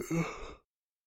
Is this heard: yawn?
yes